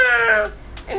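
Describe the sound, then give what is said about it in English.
A person imitates a cat, giving two drawn-out vocal meows, the first longer and rising then falling, the second shorter after a brief pause. “Then they start talking like a cat. Meow! Meow!”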